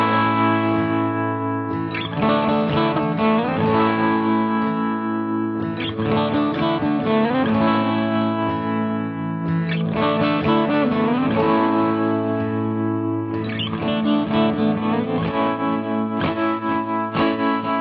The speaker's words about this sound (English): Can we go to the Jeopardy music?